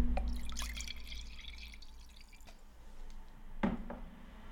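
Wine pours into a glass, a soft, steady liquid trickle with a few dripping splashes and a faint clink near the end, no voices.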